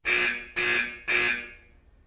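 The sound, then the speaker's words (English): A loud fire alarm in a building blares during a fire in three harsh, buzzing pulses, each about half a second long, followed by a brief lull before another blast begins. No voices are heard. “That's an alarm. Oh, my God. There's a fire in the building.”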